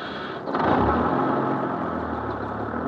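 A short thump and hiss, then a large vehicle's engine revs up loudly and rumbles steadily, like a bus shutting its doors and pulling away. No one speaks.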